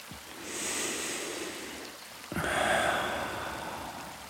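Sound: waterfall rushing water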